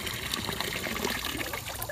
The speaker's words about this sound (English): That's just some water coming into the pool. Hang on. No, I'm peeing. Just some water.